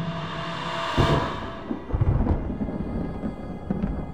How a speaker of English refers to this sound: There. I've created lightning. That will make fire for them. But now it's raining.